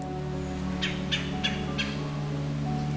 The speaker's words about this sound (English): The red-bellied woodpecker's call is a stuttered guttural call, a sound often made while clinging to the trunk of a large deciduous tree.